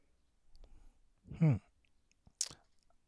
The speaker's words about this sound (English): Excuse me. Keep coughing.